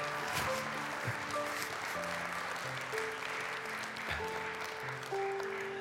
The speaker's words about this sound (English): He did the hard part so we could receive him. Go ahead and give him a hand clap of praise in here.